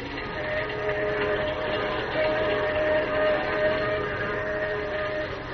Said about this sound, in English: As the train roars into the night, he and Manfred talk softly outside the door of Lois's dressing room.